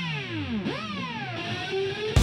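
A power drill whirring against electric guitar strings produces distorted, swooping notes that slide up and down in pitch, ending in a sudden loud burst. No one speaks.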